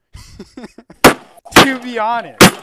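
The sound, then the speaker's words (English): Three loud, sharp thuds of a person furiously punching a desk with a fist, spaced unevenly, with brief strained vocal sounds between the blows. “Ladies and gentlemen, if you're wondering what that loud bang was, that was me punching my desk furiously.”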